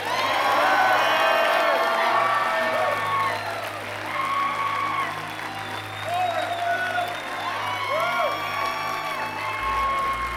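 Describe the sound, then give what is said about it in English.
A crowd gives God a clap offering, clapping and shouting praises together: a dense, sustained wash of applause layered with overlapping shouts and high whoops that stays loud for the full ten seconds. “When I count to three, I want you to give God a clap offering and shout praises to him.”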